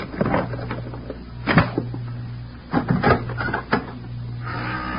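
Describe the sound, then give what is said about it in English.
A pass key scrapes and clicks in a lock, followed by a latch rattling and a door creaking open, a series of sharp mechanical clicks and knocks over a low steady hum. “Now keep back. I'm going to use the pass key.”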